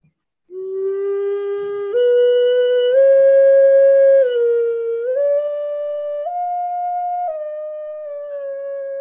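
A wind whistle from South America plays one continuous, breathy tone that steps up through several held notes, dips briefly, then settles lower. It is steady and fairly loud, with no voices.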